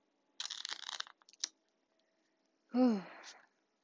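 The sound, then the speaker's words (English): A quick riffling burst of a Rider-Waite tarot deck being shuffled, followed by a few soft taps, then a short voiced sigh with falling pitch. “I am shuffling the Rider-Waite Tarot, the OG of the tarot.”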